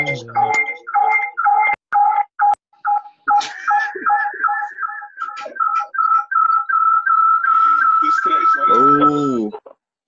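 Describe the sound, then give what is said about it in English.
A run of short electronic phone beeps gives way to a long, steady pitched tone with small blips as a phone call disconnects. A brief voice cuts in at the very end. “Disconnects my phone.”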